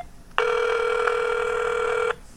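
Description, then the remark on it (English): A single ring tone from a mobile phone call to Verizon Wireless to check the account balance plays through the phone's speakerphone, one steady, slightly tinny buzz lasting under two seconds before cutting off, with no voices. “All right, I turn on the speakerphone.”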